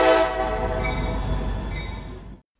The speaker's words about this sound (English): No one heard what you just said. There was a train horn going on. You've got to be kidding me. Is there really a train horn going on?